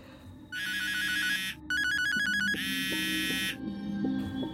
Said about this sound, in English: The phone rings.